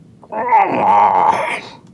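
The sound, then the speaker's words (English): A voice imitates a stomach growl as a sound clue in a guessing game, one sustained, wavering groan lasting over a second, moderately loud and tonal, with a rough rumbling texture and no other speech. “He's hungry. Dark time. That's his tummy.”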